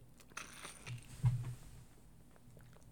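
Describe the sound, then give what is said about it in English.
Someone drinking water: soft wet sips and mouth clicks, with one slightly louder gulp partway through, then quiet trickling swallows. Faint overall, with no talking. “Sorry, I don't want to, like, get me drinking water in the mic.”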